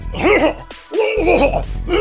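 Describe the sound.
A voice mimics Coach Sheehan heavily coughing in two loud bursts separated by a brief pause, with raspy, throaty hacking sounds.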